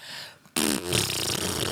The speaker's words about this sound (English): It's true when I apologize for farting, but I don't stop farting.